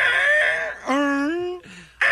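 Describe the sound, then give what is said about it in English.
A person does a Godzilla impression, imitating the monster's roar with loud, strained, screeching vocal bursts, three in a row, the middle one a sustained wavering howl, with no other talking. “Let's hear your Godzilla impression.”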